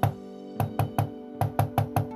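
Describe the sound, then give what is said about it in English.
An old man knocks on the door of a school at night: a single sharp rap, a short pause, then three quick knocks, another pause, and four more, fairly loud over a soft sustained tonal background. “After a moment, a smile crossed his lips, and he walked to the door of the school and knocked.”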